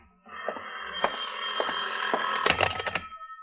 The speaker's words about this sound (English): Your phone, John. Answer it.